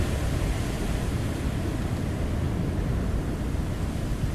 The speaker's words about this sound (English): Sofia remembers the waves of the sea of her Pozzuoli, where her life began.